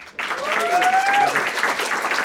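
A crowd breaks into steady applause, a dense wash of many hands clapping at an even level, with a brief whistle rising above it partway through.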